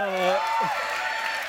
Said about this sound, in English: Her part was a little louder. That's okay. It's all right. Applause, just a little louder.